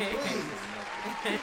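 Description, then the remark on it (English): A short burst of crowd applause played as a sound effect, a dense steady patter of clapping at moderate volume, with voices talking and calling out over it. “Clap that up, drop a bomb, and some gunshots before we move on.”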